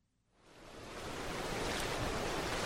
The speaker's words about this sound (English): Clear blue water laps against a white sandy beach while coconut palms wave gently overhead.